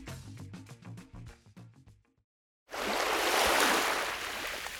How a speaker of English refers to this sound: Hi, I'm Christiana Figueres, and you're listening to the sound of ocean waves.